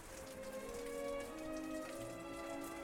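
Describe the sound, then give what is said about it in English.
Steady rain from a rainstorm patters down on grass in a soft, continuous hiss, with low sustained tones humming beneath it. There are no voices. “She would seek out the sparkling diamond droplets on the tip of pine needles, muddle her fingers in water collected in a deep leaf, and pull a drooping branch, and spring back as a rainstorm beat the grass.”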